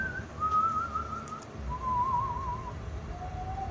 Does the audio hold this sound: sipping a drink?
no